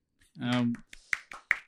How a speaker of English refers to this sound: Add some applause because two people clapping is probably not good enough. I'll add a third clap.